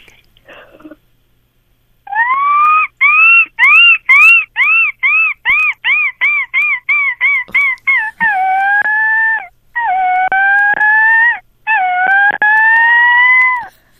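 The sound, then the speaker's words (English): A person imitates a seagull: a run of short, rising-falling yelps in quick succession, speeding up, then three longer drawn-out wailing calls. Loud and alone, with no talking. “But I heard that you do, in particular, a really fantastic seagull.”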